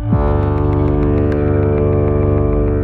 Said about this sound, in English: Low-frequency sounds have longer sound waves. This means they can travel farther without bumping into as many particles and losing energy. This is why we use low frequencies anytime we need a sound to travel as far as possible, like a foghorn.